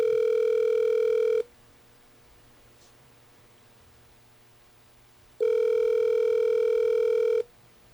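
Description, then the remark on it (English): A telephone rings in two steady electronic bursts, each about one and a half seconds long, separated by a few seconds of quiet line hiss. The tone is loud, with no voices. “The phone's ringing.”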